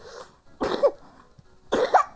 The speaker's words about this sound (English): Oh, you too! You're also full of cough coughs.